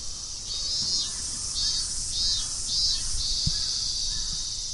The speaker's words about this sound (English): As I cycle towards Shinjuku, I listen to the staple sound of the Japanese summer, the cicadas. Cicadas are the sound that you associate with the depths of summer here. If you listen to them and just look at the blue sky, things almost feel normal.